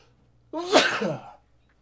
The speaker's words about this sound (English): I was trying not to sneeze.